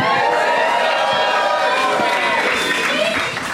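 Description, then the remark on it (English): A loud festival crowd at a show cheers and whoops continuously, many voices overlapping in a dense, sustained roar with high rising shouts breaking through for a few seconds. “So don't go woo after I say this next line.”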